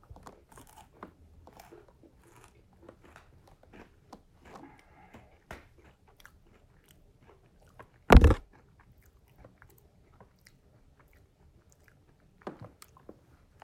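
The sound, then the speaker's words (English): Chewing with one sharp, loud crunch as a chocolate-dipped snack is bitten, surrounded by softer mouth sounds and quiet munching before and after. “I really want to make sure that you guys can hear the good crunch, the crunch quality of this thing.”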